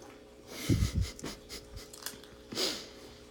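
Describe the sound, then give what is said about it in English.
Someone sips hot tea: a couple of soft slurps and breathy inhales, with a low thump early on and a longer airy sip near the end, no talking. “Excuse me while I sip my tea.”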